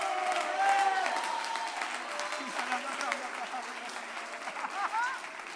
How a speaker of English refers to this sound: If you want that, I want you to clap your hands and lift your voice and shout to the Lord, for there's a divine shift.